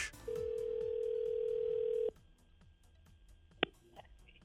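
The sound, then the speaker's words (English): A single long ringback tone of about two seconds on an outgoing phone call from a radio show to a randomly selected contest winner, a steady electronic purr, followed by a quiet line and a sharp click as the call connects. “So we'll make the phone call now and give someone $500 to help heat their home.”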